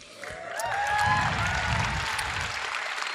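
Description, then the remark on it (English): A brief, light patter of scattered clapping from a small group, steady and moderate in level, with a faint high whistling tone early on and no one speaking. “A smattering of polite applause for lethal injection.”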